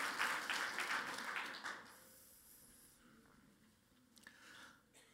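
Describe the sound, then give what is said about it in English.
A burst of audience applause for the speaker's youngest daughter at Church at the Red Door, many hands clapping in a dense, crackling wash that is loud at first, then thins and fades over a few seconds into scattered claps and quiet murmur. “Everyone give Tessa a round of applause.”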